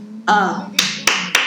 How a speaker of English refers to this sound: I gotta give a real hand clap for that one.